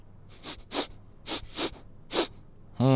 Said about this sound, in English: Let's start by sniffing his bum.